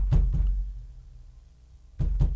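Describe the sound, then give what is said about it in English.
Heavy knocking on a door, two quick thuds, a pause of about a second and a half, then two more, booming with a deep low end. No voices. “Bromo. It's your stepbrother. Open the door.”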